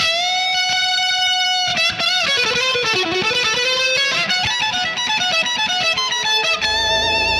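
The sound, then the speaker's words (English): A heavily distorted lute, the Mythic Thunderlute, plays loud, sustained chords with bending pitches and sharp strums, sounding like a rock guitar riff, with no talking over it. “Oh, that's starting to sound like rock music.”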